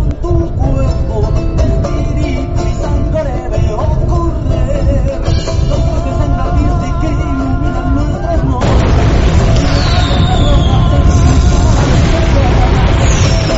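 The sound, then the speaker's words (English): Volcanic explosions boom and roar in a heavy, continuous low rumble, loud, swelling into a deeper, fuller roar partway through while voices carry faintly in the background, as the sun sets. “The explosions induce great enthusiasm for my youthful climbing companions.”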